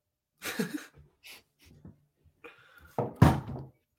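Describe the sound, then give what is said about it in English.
A phone is dropped onto a hard surface: a few light knocks and rustles first, then a loud clattering thud with a short rattle near the end. No one speaks. “Drop my phone.”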